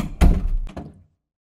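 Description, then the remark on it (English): A door swings shut with a heavy thud, followed by two quick lighter knocks as the latch settles, then silence. No one speaks. “Close that door after you.”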